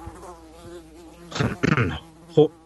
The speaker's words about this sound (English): Flies in the house. Man, is it ripe in this house?